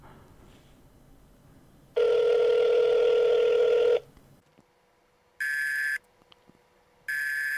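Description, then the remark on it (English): A steady electronic tone holds for about two seconds, then after a pause two shorter, higher ringback beeps sound as an outgoing phone call rings a representative's office in Portland, Oregon, at almost 9 p.m. Pacific time. No one speaks. “And yes, it is legal for me to record phone calls in Oregon.”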